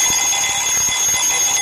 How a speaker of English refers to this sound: Pomodoro timer.